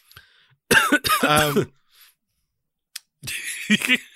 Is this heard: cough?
yes